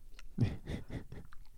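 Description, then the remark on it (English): Moist chewing of Slim Jim meat stick jerky wadded up under the gum, four or five soft wet bites in a steady rhythm with faint smacking and clicks, no talking. “I wad them up and just kind of let the jerky melt underneath my gum.”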